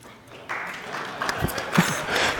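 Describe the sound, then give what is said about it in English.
After a brief quiet moment, an audience breaks into steady, moderately loud clapping that carries through to the end, with a few sharper claps and some murmuring voices mixed in. “Now, if you've ever known of this gift giver, I want you to clap, okay?”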